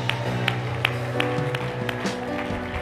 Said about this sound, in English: Let's praise the Lord, everybody. Let's clap our hands unto the Lord and just give Him praise.